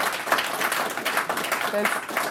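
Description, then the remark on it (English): Sustained audience applause in the room: a dense, steady wash of many hands clapping at a fairly even loudness throughout, with a brief faint tonal sound near the end. “Strong applause in the room here”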